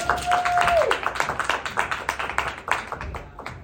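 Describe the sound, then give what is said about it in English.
A crowd applauds a volunteer from the audience with dense, overlapping claps that swell at first and then thin into scattered patters, with a brief whistled tone near the start. “Let's give her a hand, everybody.”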